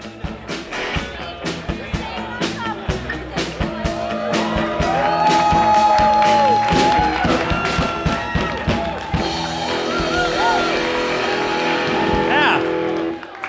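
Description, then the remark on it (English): A lively crowd roars and cheers, with shouts and whoops rising over steady applause that swells in the middle and stays loud throughout. “Hot crowd.”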